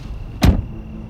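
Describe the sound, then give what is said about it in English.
A car door unlatches and swings open in one brief thunk as someone climbs out of the car, set against a faint, steady low hum from the vehicle. “So I climb out of the car.”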